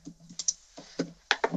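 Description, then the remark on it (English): Several quick, light keystrokes tap out on a computer keyboard in an irregular rhythm, clear with no voices, a few clicks landing in fast pairs, as a man uses the keyboard to choose words for the computer to read out loud. “The grid is just a computer keyboard that allows him to quickly choose words and then have the computer read them out loud.”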